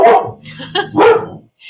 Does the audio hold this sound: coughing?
no